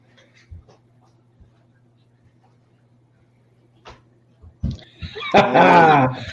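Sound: dogs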